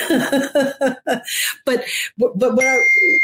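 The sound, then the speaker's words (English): A phone notification ding rings out clearly near the end, a bright sustained electronic chime that lingers after a stretch of someone talking. “No matter what I do, I turn the phone off and it still dings.”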